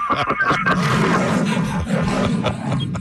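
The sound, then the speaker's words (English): An agitated lion roars and growls loudly and continuously while dragging a man by his neck inside its cage at an animal preserve, a deep rumbling snarl with harsh, rasping bursts and no pauses. “Here's What A Lion Dragging A Man By His Neck Sounds Like”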